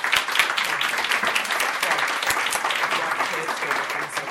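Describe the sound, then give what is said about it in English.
A crowd applauds steadily, with many overlapping claps forming a dense, even wash of sound that holds at a fairly constant loudness throughout. “Can we put our hands together for these guys who have been here for a really long time?”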